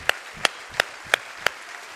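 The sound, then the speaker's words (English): An audience gives the Lord a hand clap, clapping in a steady rhythm, five sharp, crisp claps evenly spaced about a third of a second apart, with no voices over them. “I think it'd be all right if we gave the Lord a generous hand clap right now all over this house.”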